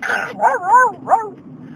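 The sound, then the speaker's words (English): A few dogs bark and yelp in quick succession, three short, high, wavering cries, with a faint background hum between them. “Oh, every dog was lined up.”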